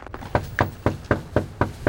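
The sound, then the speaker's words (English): Someone raps on a front door at the end of an unshoveled walkway on a minus 8 degree winter day while canvassing voters, with about seven quick, evenly spaced knocks, fairly loud, with no voices and only faint background noise. “we follow Peter up an unshoveled walkway to a front door”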